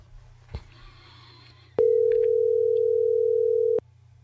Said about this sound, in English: It's going to go right to voicemail. Not right to voicemail. It's already ringing.